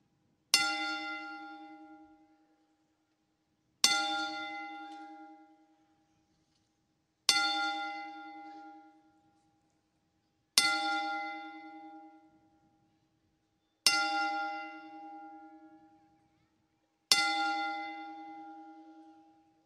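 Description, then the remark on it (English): A single bell is struck six times at a slow, steady pace as a ten-bell salute honoring people who died, each clear ringing tone fading out before the next strike, with no voices present. “and we just want to give a 10-bell salute for the lost ones that we lost this weekend.”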